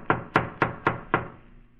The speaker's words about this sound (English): I better knock again.